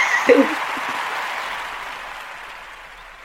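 A round of applause for Lionheart and Jamila Wisdom: dense, steady clapping from a crowd, loud at first with a brief burst of cheering, then gradually fading over a few seconds.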